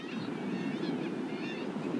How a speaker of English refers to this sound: Walking along the top of the beach, in the dunes really, between stands of bracken and gorse and marram grass.